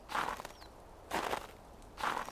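Three slow, evenly spaced footsteps crunch and compact fresh, undisturbed snow among pine trees in cold weather, each a broad gritty burst, with quiet pauses between and no one talking.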